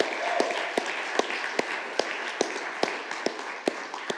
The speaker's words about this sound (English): I'd love to just give him a round of applause and thank him for what he did.